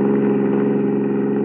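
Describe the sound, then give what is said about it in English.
A car engine hums steadily at a constant pitch, fairly loud, the drone of a car driving along in pursuit of another car, without any voices over it. “Slow down. I'm going to teach that guy a lesson. Pull up here.”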